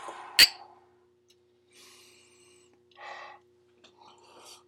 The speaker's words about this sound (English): That was a very cautious sip. That was cautious.